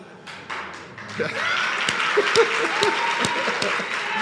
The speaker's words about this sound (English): Yeah, that gets the biggest applause.